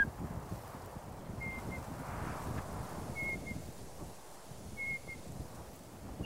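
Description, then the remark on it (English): A faint two-note whistle call of a night parrot repeats three times at steady intervals, thin, over a constant rush of wind and rustling. “And then there's a two-note whistle, which is like a”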